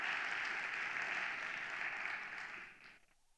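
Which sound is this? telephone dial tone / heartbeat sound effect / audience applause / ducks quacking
audience applause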